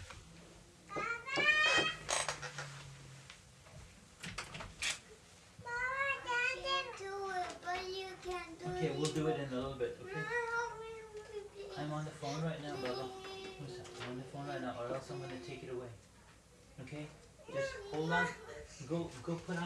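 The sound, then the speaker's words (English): A six-year-old girl screams and shrieks in repeated high-pitched, wavering bursts, loud and insistent, with brief pauses between outbursts. “I'm going to take care of my kid. She's screaming.”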